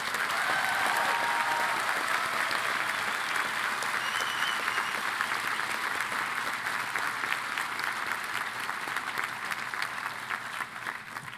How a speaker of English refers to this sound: Parents, siblings, close friends, you have hoped and dreamed of this day for your students. This could not have happened without you. Let's give you a resounding round of applause.